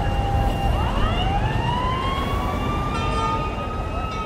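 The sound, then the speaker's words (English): An ambulance siren wails loudly as the ambulance arrives at a hospital emergency department, its tone sweeping slowly upward and then holding steady over a low, constant rumble of engine and street noise. “And I think this is the ambulance coming in.”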